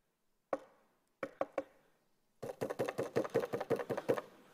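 Knocking on a door: one knock, a pause, three quick knocks, then a rapid, insistent burst of about ten louder knocks, with no voices.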